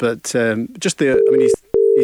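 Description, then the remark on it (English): A telephone ringing tone on an outgoing call dialed during a live radio show: two steady, low buzzing bursts separated by a short pause, heard while people keep talking over it. “You get the ringing tone.”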